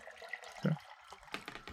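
Liquid pours into a glass as a drink is poured, a short splashy trickle with a brief gurgling burst partway through, heard on its own without any talking.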